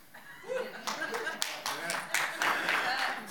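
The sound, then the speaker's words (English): A crowd of people claps in a dense, steady patter of sharp hand strikes that swells after a moment and holds, with a faint murmur of voices underneath. “That gets a clap.”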